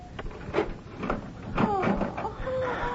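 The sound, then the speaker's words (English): A key rattles and clicks in the lock of a room door, followed by the creaking, scraping sound of the door swinging open, moderately loud, with small knocks and a faint squeak. “Is the door locked? Oh, yes. The key is here somewhere.”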